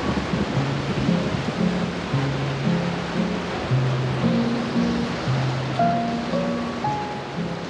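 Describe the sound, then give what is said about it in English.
A loud, steady roar of hurricane wind and driving rain fills the scene without letup, with low sustained musical tones drifting underneath. No one speaks. “And weather's going to be rough for the next day or two as the hurricane touches down just to the north, causing strong winds and rain all through the night.”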